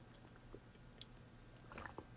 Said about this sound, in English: I have a sip of my coffee.